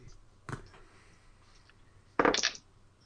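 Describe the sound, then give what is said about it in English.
Dice are rolled for an attack and tumble onto a hard tabletop: one sharp click, then a short rattling clatter of several quick knocks as they settle, fairly loud, with no voices. “I didn't expect to use three dice tonight.”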